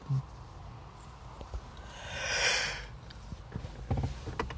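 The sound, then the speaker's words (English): A single drawn-out, breathy yawn rises and fades over about a second, airy and fairly soft, with a few faint clicks and low rumbling before and after. “Yeah, I'm sorry for yawning.”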